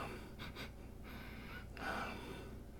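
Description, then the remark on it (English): Several breathy sniffs in quick succession, someone smelling a Rhône village Syrah red wine from a skull goblet, with a slightly longer, stronger inhale near the end. No one speaks. “So what we're going to do, give it a sniff.”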